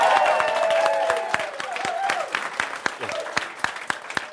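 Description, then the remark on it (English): A crowd lets out loud, sustained screams and cheers, their voices blending into a high, wavering roar, while scattered sharp claps punctuate the noise as the shouting gradually fades. “So go ahead and scream it out.”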